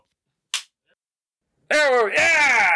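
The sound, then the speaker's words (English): A single sharp slap as a moth that had been flying around an office is swatted, followed by a second of quiet and then a loud, drawn-out vocal groan or exclamation. “I've had a moth flying around my office for a few days. It drove me freaking nuts, but finally killed it.”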